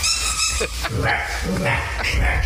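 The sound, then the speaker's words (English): A small dog lets out several high, squeaky yips in quick succession as its owner barks at it, over a steady low background rumble. “Oh, here's a guy that's kind of squeaky.”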